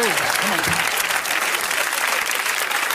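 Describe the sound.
A crowd claps steadily for about three seconds, a dense, loud wash of applause that never lets up, with a brief voice rising faintly through it at the start.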